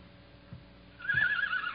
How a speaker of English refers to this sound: What's the matter? Sick horse? No, the horse is fine.